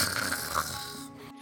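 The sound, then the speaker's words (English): A single drawn-out snore, rough and rattling with a nasal buzz, fairly loud, fading slightly at the end with no talking around it. “And then his eyes droop, and he kind of goes limp in the chair again.”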